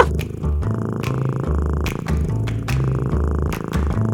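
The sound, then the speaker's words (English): A cat purrs loudly, a continuous low rumbling that swells and fades in a steady breathing rhythm about twice per second, with no voices. “They're cats, like literal cats.”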